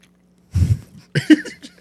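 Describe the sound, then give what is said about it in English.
Open-mouthed ASMR chewing of a crunchy snack that tastes like a pancake with syrup, in two short bursts of smacking and crunching, with a faint steady hum underneath. “No, you have to chew with your mouth open.”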